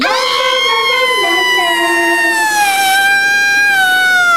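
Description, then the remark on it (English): A loud, shrill panic scream held for about four seconds, its high pitch wavering and sliding slightly downward, almost siren-like, with no other voices. “Listen again. This is my panic scream.”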